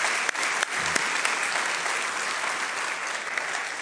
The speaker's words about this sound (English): Hats off to that team that's here. I was wondering, could we just give them a round of applause for all they've done? It's been fantastic.